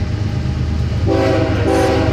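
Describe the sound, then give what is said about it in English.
A train rumbles steadily, then a loud, sustained horn blares in over the low roar, briefly breaking off before sounding again. No one speaks. “Oh, that's the hype train.”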